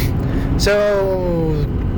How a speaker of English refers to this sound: driving in my truck. It's a snowy day. The roads are plowed, but snow covered, so it's bumpy. So there's a lot of noises going on in my truck. I'm not sure if you can hear it.